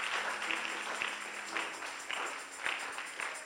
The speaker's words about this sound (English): This clapping looks like you are in winter. You have some gloves on your hands.